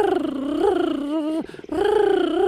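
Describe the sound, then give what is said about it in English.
A cheetah's high-pitched purr, a steady, tonal, buzzing call held loud, briefly breaking off midway before resuming at the same pitch. “And they have this sweet little, this high-pitched little purr they do, where it's deceiving because you just want to hug them.”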